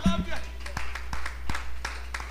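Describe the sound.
Scattered hand claps from a church audience clapping their hands to the Lord during a service, sharp irregular slaps spread over a couple of seconds rather than a steady beat, with a brief voice at the start and a low hum underneath.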